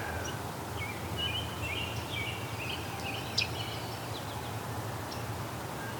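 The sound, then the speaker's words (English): A myrtle warbler gives a soft, sharp tick call, heard once amid faint scattered chirps, over a steady low background rumble. “It's a myrtle warbler with its tick.”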